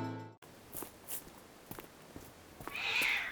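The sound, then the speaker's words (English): A frightened cat named Puss Puss lets out a short, strained meow, followed by a few soft padding steps and then a drawn-out, breathy hiss at the end. No one speaks. “What's got you so scared, Puss Puss?”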